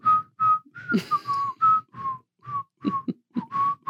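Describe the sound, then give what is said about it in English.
A person whistles a theme tune, a string of short, clear melodic notes with brief gaps, loud and bright with faint breathy noise beneath, no talking. “They'd rather listen to the real version than your whistled version.”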